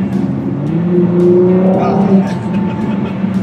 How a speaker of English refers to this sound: So it's 660 horsepower. Mm-hmm, that's right. Twin turbo V6. Yep. 3.5 liter. Yes. Yeah. And engine sounds amazing.